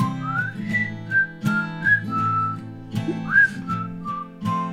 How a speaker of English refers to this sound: Whistle's back. The whistle.